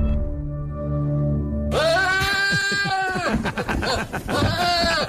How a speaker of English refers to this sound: The Will Ferrell goat just comes in and ruins everything.